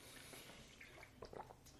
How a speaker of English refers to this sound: Let me take a swig of water really quick as I do this.